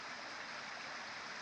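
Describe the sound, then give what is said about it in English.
A mountain stream rushes steadily, its continuous hiss-like gurgle of water unbroken from start to finish, heard on its own without any voices. “No, it really is a mountain stream of pure, fresh, refreshing, necessary water.”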